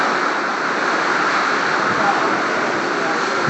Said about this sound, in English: It's not something I do really, but may as well when everybody's so stressed out by listening to the calming ocean waves.